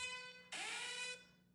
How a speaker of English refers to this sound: That was actually our breaking news alarm. What? We have a breaking news alarm?